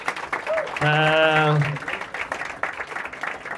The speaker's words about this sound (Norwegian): ja, en applaus. Ja.